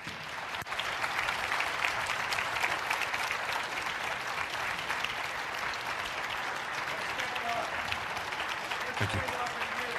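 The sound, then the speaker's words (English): An audience claps steadily after a speech for the whole stretch, a dense, sustained wash of applause at even loudness, with a brief spoken thanks heard over it near the start. “Big round of applause.”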